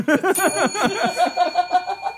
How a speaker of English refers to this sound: Ring the bell. Ring the fucking bell.